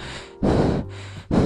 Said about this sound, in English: Her breathing gets faster and she falls down suddenly.